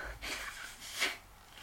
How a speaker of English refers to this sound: are you blowing your nose during my plug?